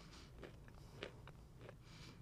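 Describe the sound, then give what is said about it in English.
Quiet chewing: soft crunches and moist mouth clicks at irregular intervals over a low background hum, with no talking. “But listening to you guys chew really brings me a lot of joy.”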